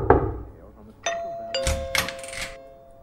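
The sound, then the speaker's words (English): A doorbell rings with a two-note ding-dong chime, a higher tone followed by a lower one that lingers and slowly fades, preceded by a brief murmur of voice. “Oh, someone's at the door, eh?”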